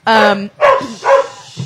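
A dog barks loudly, three sharp, tonal barks in quick succession, the first one drawn out a little longer than the others.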